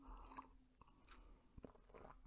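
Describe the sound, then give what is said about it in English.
Quiet sipping of tea: soft slurps and swallows with a few small mouth clicks over a couple of seconds, with no talking. “But before I do that, I need to take a sip of my tea here.”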